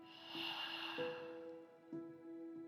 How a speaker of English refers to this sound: And now I want you to take a nice deep breath in through the nose. Hold it. And let it out.